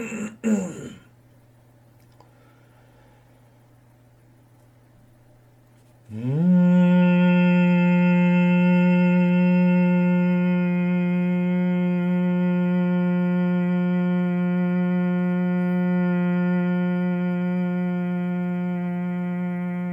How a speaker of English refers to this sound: It is good to keep both the jaws, the teeth together, so that you have a better humming sound in the vibration, helping the brain and the mind.